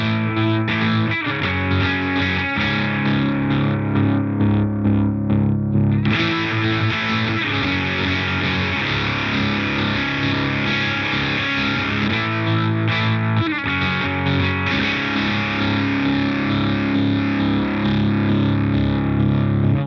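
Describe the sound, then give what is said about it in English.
A heavily distorted electric guitar through a tremolo pedal set to a rising sawtooth, with distortion added on a momentary switch, plays sustained chords with a pulsing, rhythmic tremolo swell that rises and cuts off repeatedly, loud with no talking. “The third sound is the traditional tremolo, more of a loud, soft sound with the rise sawtooth with mm-hmm.”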